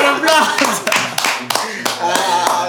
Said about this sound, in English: Okay, let's get a round of applause.